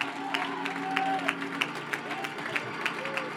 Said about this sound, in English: You need a breakthrough? Start clapping your hands. I'm not feeling it. Clap until you get a breakthrough.